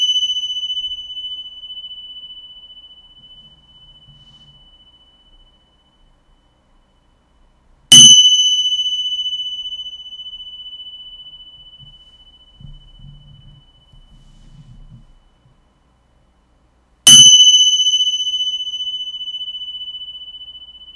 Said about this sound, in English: I'm going to ring this bell now. Yeah, okay. Y'all ready? Turn the volume down because it's going to be high-pitched.